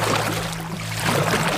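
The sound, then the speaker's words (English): Steady sloshing and splashing of water as someone wades through shallow water to shore, with a low continuous rumble underneath and no voices. “Let's get to shore.”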